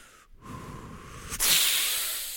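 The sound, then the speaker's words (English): A person makes a breathy, straining bodybuilding exertion noise: a rough breath, then a loud, sustained hiss forced through the teeth, with no talking. “What's your bodybuilding sound? My sound is like this.”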